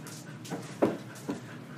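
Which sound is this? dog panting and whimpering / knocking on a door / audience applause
dog panting and whimpering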